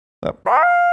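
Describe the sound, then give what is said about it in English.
A person mimics a Bichon dog howling, starting with a short yip, then sliding up into a loud, steady howl that holds to the end. “What if the minigun was triggered by a Bichon howl?”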